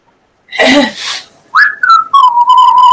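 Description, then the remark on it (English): A short breathy rush of air, then a person whistles one clear, loud tone that dips slightly in pitch and holds steady for about a second and a half. “I don't think he's in a whistling mood today.”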